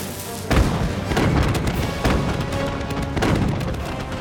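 Satan's newly constructed cannons fire on the angels of Heaven in a rapid series of deep, booming blasts, about four of them, burning cannonballs erupting into explosions over a continuous rumbling roar of battle.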